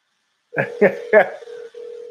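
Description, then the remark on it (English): A phone call being placed: three quick dialing beeps, then a steady electronic ringing tone that pauses briefly and starts again, clear as if heard through a handset. “I'll just call him.”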